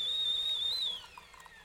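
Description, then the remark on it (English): A kettle's shrill, steady whistle holds one high pitch, wavers upward briefly, then cuts off after about a second, leaving a faint quiet hiss behind. “Well, while she waits, maybe we should put the kettle on.”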